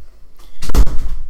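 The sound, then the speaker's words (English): A door closes as someone leaves, with one heavy, low thud that trails off in a brief rumble, preceded by faint shuffling. No voices are heard. “Okay, close the door on your way out.”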